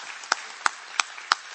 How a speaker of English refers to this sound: Give the Lord a hand clap for the internet.